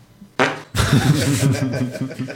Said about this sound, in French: Il va péter.